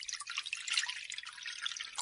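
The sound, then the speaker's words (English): Water runs steadily into a shallow metal oven tray as it is filled full, a bright, splashy trickle with small drips and spatters, continuous throughout, with no voices. “filling a oven tray full of water”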